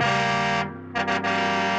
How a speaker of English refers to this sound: The car horn. Mm-hmm. You know, that weird horn sound?